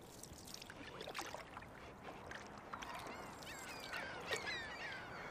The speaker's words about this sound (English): Okay, so there's an owl in a tree. Minding his own business, it seems. Two crows are just screaming at him, like, or her. Diving at it, harassing it. And then there's like 12 gulls flying in circles, yelling.